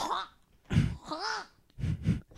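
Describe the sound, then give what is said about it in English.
A person imitates a cat hacking up a hairball: rough, throaty gagging bursts broken by a wavering nasal whine, ending in two more harsh retching hacks, all fairly loud with no other talk. “I have to cough up a hairball.”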